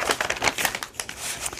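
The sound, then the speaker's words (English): Paper bag crinkling as it is handled and folded up before cutting, a dense run of crisp rustles and crackles with brief sharper snaps, continuing steadily without any voices. “Okay, so I'm just folding the paper bag up so I can do the fewest cuts possible to get some straightaways.”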